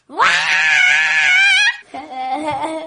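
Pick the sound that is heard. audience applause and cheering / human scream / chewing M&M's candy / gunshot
human scream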